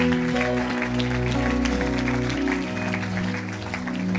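An audience applauds with dense, steady clapping, heard over sustained keyboard chords that keep playing underneath throughout, with no talking.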